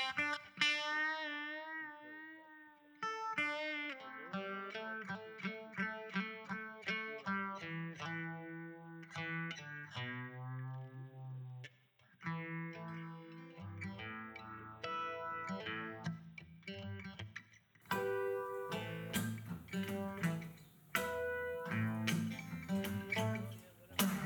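A country song cover: a woman sings a sustained, wavering melody over strummed guitar and a steady bass line, with the accompaniment growing fuller and louder in the final stretch.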